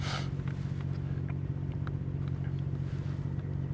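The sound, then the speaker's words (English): A steady low engine rumble and road noise from inside a moving car driving through city traffic at night, with faint scattered traffic sounds and brief clicks over the constant hum. “All in all, though, traffic's not too bad at this hour. It's quieting down a bit.”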